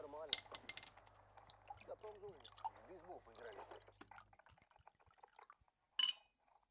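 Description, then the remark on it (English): Liquid glugs and splashes as vodka and soda water are poured into glasses, with a sharp glass clink at the start and another bright clink near the end, fairly quiet. “All I could get were potato chips and vodka. Could you find any mixer? Oh, just soda water.”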